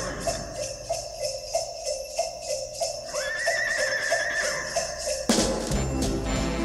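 Steady, evenly paced clip-clop hoofbeats of a walking horse, clear, with a brief whinny rising over them midway before the rhythm breaks off near the end.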